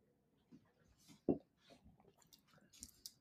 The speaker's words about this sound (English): we were told to drink this wine in sips of three